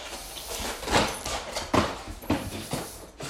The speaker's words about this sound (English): It's probably coming through pretty good on the microphone. As he drags his toy across the floor. Cones smacking everywhere. Toy smacking everywhere.